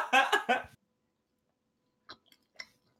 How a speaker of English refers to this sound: Who is munching?